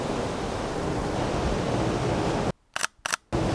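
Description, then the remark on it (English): A pair of quick, crisp camera shutter clicks as someone photographs waves and the sky as the sun peeks out of the clouds, cutting through a steady wash of surf and wind noise that briefly drops out around them. “I'm going to get some flare in that picture.”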